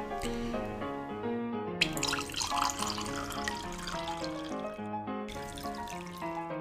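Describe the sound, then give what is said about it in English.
Cabernet Sauvignon wine pours into a large glass in two bursts, a splashy gurgling stream that rises slightly in pitch as it fills, over steady background music. “Pour myself the classic large glass of wine.”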